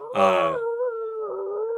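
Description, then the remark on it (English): A single long, wavering howl like a wolf's, beginning with a strong burst and then holding a steady, drawn-out tone before trailing off. It sounds like a human voice imitating the howl, meant as the distant howl of a wolf in Signal City on Halloween. “The distant howl of a wolf that is somehow in the city playing in the background.”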